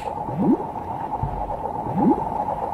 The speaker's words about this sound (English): I watched a documentary that featured jellyfish, and one of the things that you hear every time they move, they sort of like, pulse forward, you'd hear this bloop. Yeah. Like whooshing water.